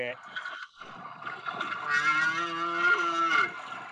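A whale singing, picked up on a hydrophone after it dove right in front of the listeners: long, low, moaning tones with rich harmonics, swelling and wavering over a few seconds, with a brief dip before a louder sustained call.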